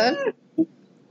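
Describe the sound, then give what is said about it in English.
A Techno Robotic Kitty interactive robot toy cat lets out one short, bright meow with a slightly synthetic, tonal quality, followed by a brief soft chirp and then quiet. No talking. “Trash cats, robot toy cats.”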